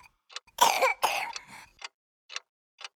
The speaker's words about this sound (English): The baby starts coughing, and the young couple exchange worried glances. Her face turns beet red from the effort of coughing and gasping for air.